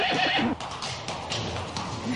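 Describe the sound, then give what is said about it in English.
A horse whinnies loudly, its neigh rising and wavering, while hooves clip-clop in a steady rhythm underneath for the rest of the short moment. “And just, they were like on their horses.”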